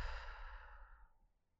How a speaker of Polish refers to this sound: Weź głęboki wdech przez nos. Wydech przez usta. Jeszcze raz wdech przez nos. Wydech przez usta.